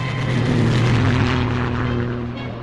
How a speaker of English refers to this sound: She got a new plane, a new navigator, and took off again.